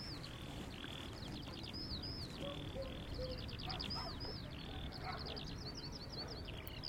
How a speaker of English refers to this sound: Again, once one starts, the next door territory skylark will start up as well.